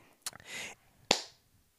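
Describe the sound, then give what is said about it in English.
A soft tap and a brief rustling hiss, then one sharp, loud hand clap with a short bright ring as it fades. No one speaks. “I'm sorry, the clap and so the pause when I could”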